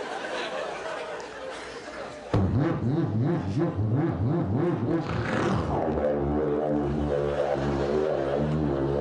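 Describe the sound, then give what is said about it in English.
A car engine suddenly roars to life and revs up and down repeatedly in rising and falling surges, then settles into a steady, loud idle drone, with faint background noise before it starts. “What is this, an airplane engine?”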